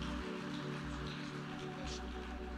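audience clapping hands

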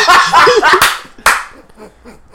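loud hand clapping

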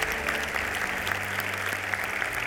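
audience applauding

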